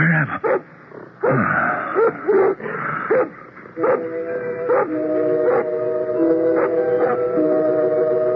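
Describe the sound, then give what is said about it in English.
A dog barks repeatedly in short, loud bursts at an uneven pace, with drawn-out whining, howl-like tones creeping in between the barks as it goes on. “What is it that disturbs your conscious mind, Doctor? A dog barking.”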